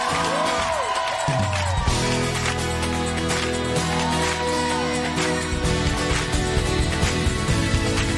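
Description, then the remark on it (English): An audience claps and shouts steadily over loud, sustained music, the claps forming a dense, continuous rhythm with scattered cheers mixed into the roar. “Now come on, clap your hands and shout if you believe it tonight.”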